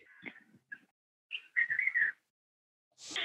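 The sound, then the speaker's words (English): Birds singing at sunrise at the foot of Arunachala mountain, in short bursts of bright, whistled chirps and trills, clear, with brief pauses between phrases and a hissing rush of sound at the very end; no one speaks. “You can hear the birds.”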